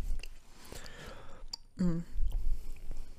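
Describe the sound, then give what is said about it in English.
Soft sipping and slurping of bubble tea through a straw, with wet sucking noises over about three seconds and a brief voiced hum in the middle. “Just sips bubble tea in dissatisfaction.”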